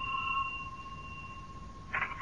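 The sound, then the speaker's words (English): A house doorbell rings with a sustained, steady two-note electronic tone for about two seconds, fairly quiet, followed by two short bursts of noise at the end. “This is the house. Ring the bell.”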